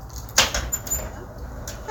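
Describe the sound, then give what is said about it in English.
A door being clumsily worked open by a woman who cannot figure it out: a sharp knock and rattle, then a few lighter clicks and bumps spread over two seconds, over a low, steady rumble. “Oh, and this blonde, she couldn't even figure out the door.”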